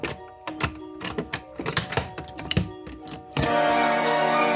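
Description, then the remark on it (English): A rapid, uneven series of sharp clicks and clunks as a hamster named Toots fastens door locks one after another, ending in a steady, loud rushing noise that holds to the end. “Wait, did the hamster just lock the door?”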